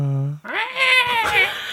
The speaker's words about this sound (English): Meow. Ooh, spooky cat.